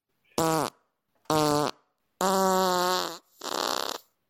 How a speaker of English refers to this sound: He was farting a lot as well, flagellating. Is that a symptom? I didn't know that was a symptom. That's just a bad diet.